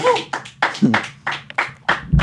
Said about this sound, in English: everybody in the room right now, clap for Chet Hanks.